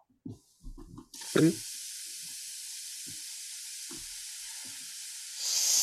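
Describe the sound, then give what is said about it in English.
A steady, loud sizzle of food cooking on a hot grill starts after a few soft knocks and continues unbroken, with occasional low clinks and a brief louder crackle near the start. “Sizzling hot takes are brought to you by Der Burgers.”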